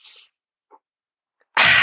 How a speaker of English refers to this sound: Breathing in through the nose with force and intention.